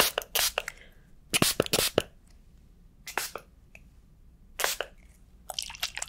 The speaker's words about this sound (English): Gonna spray really quick, just okay. I'm just gonna spray down a little bit more, just a little bit more.